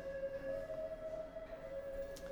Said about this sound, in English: Hang on a sec. Let the siren go by.